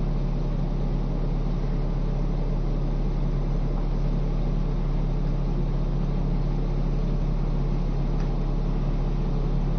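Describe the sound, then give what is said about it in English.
An engine runs steadily throughout, a continuous low droning hum with a broad rumbling wash over it, unchanging in level from start to finish, with no voices. “The mind can say, oh, the sound of an engine, this is a distraction.”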